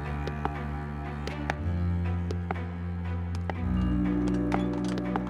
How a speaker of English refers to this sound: Suddenly, she hears footsteps behind her and turns around.